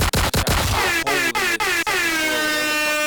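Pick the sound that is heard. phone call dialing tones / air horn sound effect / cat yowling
air horn sound effect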